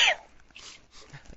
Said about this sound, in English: I'm gonna sneeze.